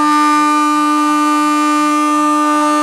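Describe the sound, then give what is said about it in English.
A loud, sustained siren blares steadily for the whole stretch, a single unbroken tone with rich harmonics and no talking over it: the final siren of a football match at Downton Park Reserve, where Yarragon won 11-10, 76. “I think that might be the final siren”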